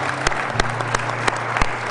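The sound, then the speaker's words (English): An audience claps steadily, a dense wash of hand claps with a few sharper individual claps standing out at regular moments, sustained at moderate loudness throughout, applauding to thank the Northern Michigan District. “Would you thank the Northern Michigan District for sending him here?”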